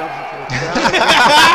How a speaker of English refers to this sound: And then tap. We could hear the crowd one more time.